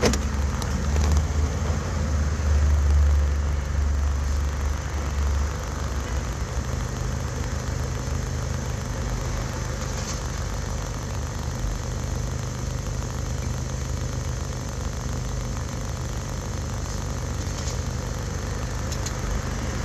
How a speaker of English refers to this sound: You like the sound of cars passing by, because that's what you're going to get right now until she opens the door.